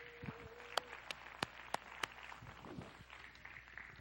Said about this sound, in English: Let's clap our hands and let's thank the Lord for that.